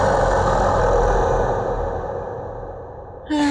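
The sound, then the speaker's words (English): A person imitates a dragon's roar with one long, loud, raspy growl that slowly fades over about three seconds, then a brief higher sound cuts in right at the end. “You actually, your blood runs cold as you hear a horrific, terrifying dragon roar from inside of the goblin pit.”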